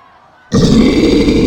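After a brief hush, a loud, deep, rasping roar bursts in and holds steady: the growling bellow of a monstrous, primate-like beast covered in matted white fur, with clawed limbs and a head like a deer skull, filling the rest of the moment.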